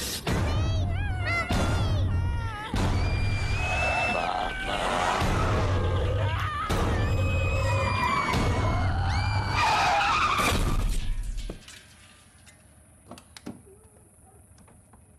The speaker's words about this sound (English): And she crashes the car directly into someone in an intersection.